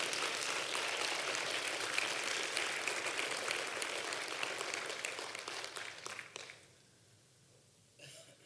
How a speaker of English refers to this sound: Christ is risen. No fooling. It's true. He's alive. Well, you can go ahead and clap for that. That's all right.